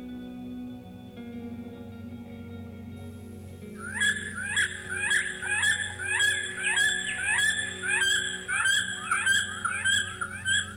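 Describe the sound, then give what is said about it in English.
A bald eagle's high, thin chittering call repeats in rapid piping bursts, starting a few seconds in and continuing steadily, clear over a low background hum. “It's a bald eagle.”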